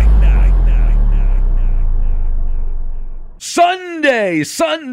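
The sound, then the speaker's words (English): A loud, heavy monster truck engine roar rumbles for about three seconds and gradually fades, then an excited announcer-style voice shouts in sharp bursts, in an old commercial for monster truck racing. “That's an old commercial when I was a kid for a monster truck racing.”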